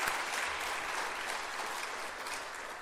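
Steady, sustained applause from a crowd for the TNT group at an Awana event, a dense wash of many hands clapping at an even loudness throughout, with no voices standing out.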